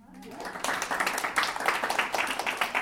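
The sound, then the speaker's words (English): A room full of people breaks into applause for a couple's 27-year partnership anniversary, the clapping swelling quickly into a dense, steady patter of many hands that keeps going at full volume. “Well, you should know whether it's good or bad before you start clapping.”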